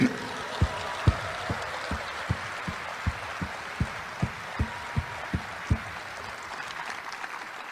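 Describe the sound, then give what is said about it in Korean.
Sustained crowd applause of thanks for candidates Lee Nak-yon, Chung Sye-kyun, Choo Mi-ae, Kim Doo-kwan, Park Yong-jin, Choi Moon-soon, Yang Seung-jo and Lee Kwang-jae forms a wash of noise, punctuated by about a dozen deep, evenly spaced thumps, as if the audience were clapping or beating in unison. “이낙연, 정세균, 추미애, 김두관, 박용진, 최문순, 양승조, 이광재 후보님께 뜨거운 감사의 박수 부탁드립니다.”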